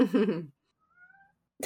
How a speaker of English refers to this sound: Do you hear him? Yeah. Shh, why are you meowing?